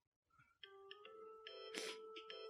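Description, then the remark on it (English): A phone ringtone plays a bright electronic melody of short sustained tones over a steady low hum, with a brief noisy burst midway; no voices. “It's just my ringtone.”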